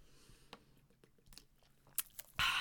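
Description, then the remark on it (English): Someone takes a swig of water: quiet wet mouth clicks and a couple of soft gulps, then a brief, louder breathy rush at the end. No one speaks. “I'm going to take a swig of water because my mouth is all dry.”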